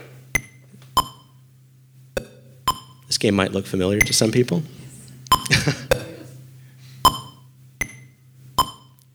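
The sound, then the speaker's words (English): Short, bright electronic pings from Atari's 1976 Breakout arcade game, a single-player Pong-like game with rhythmic tones tied to the gameplay, ring out roughly a dozen times at loosely rhythmic intervals over a steady low hum, with a person speaking briefly midway. “It featured rhythmic tones, creating one of the first times game was synchronized between sound and music, so it's part of the gameplay.”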